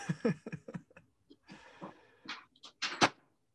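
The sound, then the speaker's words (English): A door being shut: a run of soft knocks and rattles, a brief creaking sweep, then a couple of sharper clunks as it closes and latches, with no talking. “Let me shut my door.”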